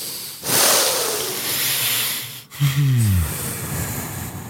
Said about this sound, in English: I'm going to breathe in. I'm imagining my balls inflating. All right. And as I breathe out, I'm imagining them.